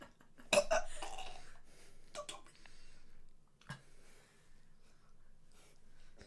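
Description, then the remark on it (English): A stomach rumble: a few short, low gurgling bursts, the loudest near the start and a deeper grumble a few seconds later, against a quiet background with no talking. “Oh, my tummy's rumbling.”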